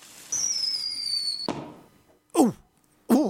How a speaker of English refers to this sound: They're not going to do a lot of damage. And I'm going to set them off in the studio. And you get to experience it as well, dear listener. You get to enjoy the fireworks show as well. So let me just wander over and light the first firework.